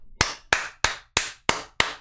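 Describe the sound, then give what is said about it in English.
Six sharp, crisp hand claps land in a steady, evenly spaced rhythm as a round of applause for a woman, each a bright slap with a quick decay, with no voices over them. “A round of applause for this woman, ladies and gentlemen.”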